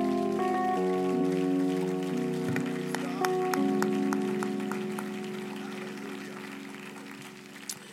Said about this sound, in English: And could somebody clap your hands to Jesus one more time?